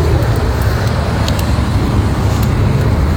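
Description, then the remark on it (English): Steady low rumble of road noise from inside a moving car, a continuous dense hum filling the low end with faint ticks and clicks above, no voices. “All right, we're here in the car, and there's already two kids up here by this gate.”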